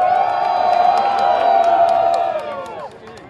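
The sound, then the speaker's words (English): A crowd at a rail workers' union (RTBU) rally roars with cheers and shouts, making noise so that Andrews will hear them: a dense wall of many voices with a few whoops rising above, sustained loudly for a few seconds before fading away. “Now let's make some noise and hopefully Andrews will hear us.”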